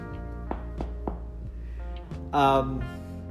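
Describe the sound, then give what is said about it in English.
Three quick knuckle knocks on wood in a brief, even rhythm, fairly crisp, over a steady low tonal hum, followed by a short burst of voice. “Knock on wood.”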